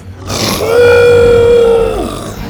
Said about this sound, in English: As if breaking free of invisible shackles, Buck raised his big red head to the sky and let out a roar that sent chills up Bo's back.